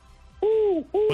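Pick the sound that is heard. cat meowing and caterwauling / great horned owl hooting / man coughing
great horned owl hooting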